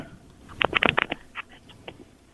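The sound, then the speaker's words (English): A quick flurry of small plastic clicks and clatters, like a phone being fumbled and snapped back together, then a few sparser taps trailing off. No voices. “Sounds like you're putting your phone back together.”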